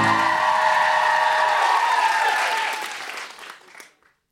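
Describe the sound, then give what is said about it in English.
An audience applauds on cue during the closing titles of a live show, a dense, steady patter of many hands clapping at full strength for about two and a half seconds, then thinning out and fading to silence. “I'll point at Deborah, she'll start reading, I'll point at you, you'll start clapping.”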